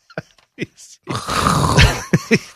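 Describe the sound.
A person imitates Kendrick Perkins' heavy breathing: a few short huffs, then one long, raspy, groaning exhale, followed by two more quick breaths.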